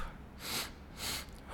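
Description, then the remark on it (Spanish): Two quick, breathy inhales in a relaxation breathing exercise, each about a quarter second long, separated by a brief pause, with a hissing, airy quality and no talking, as the exhale begins at the very end. “Es dos inhaladas con una pausa en medio, es y exhalar.”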